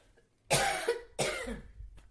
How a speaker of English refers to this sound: I'm so upset. I'm coughing.